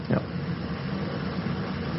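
An air conditioner runs with a steady, even whir and a low hum underneath, holding constant throughout, with a brief soft bump near the start and no one speaking.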